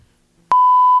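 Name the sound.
censor bleep tone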